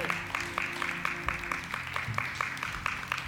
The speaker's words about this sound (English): Clap your hands for these babies of God. Amen.